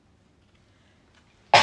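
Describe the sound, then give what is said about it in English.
A single sudden, loud sneeze bursts out after a stretch of near silence, sharp and breathy, cutting off at the end. “Bless you.”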